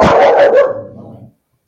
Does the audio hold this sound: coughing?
no